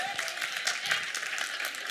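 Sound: women clapping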